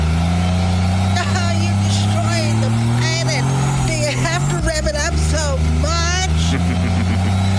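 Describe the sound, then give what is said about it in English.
A diesel truck engine rumbles loudly and steadily, its pitch rising briefly about halfway through, while people talk over the constant drone; the truck is being used to charge a pink car. “This diesel truck can charge your vehicle, and we need to get your pink Mary Kay car back to your mom before she wakes up.”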